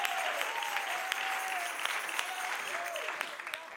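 An audience claps hands in praise to God during a gospel church sermon, a dense, steady wash of applause with sharp individual claps popping out, while faint voices rise and fall underneath.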